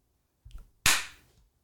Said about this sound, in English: We're all going to clap. Okay, ready? You clap. First.